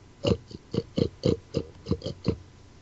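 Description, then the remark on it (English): A person imitates a pig with a quick series of about nine short, grunting oinks in a steady rhythm, fairly loud, with no other talk. “How did they come up with that as a noise for a pig to make?”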